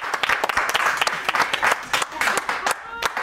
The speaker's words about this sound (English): Oh, applause. Thanks, guys. They went to clapping school.